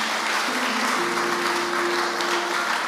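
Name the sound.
audience clapping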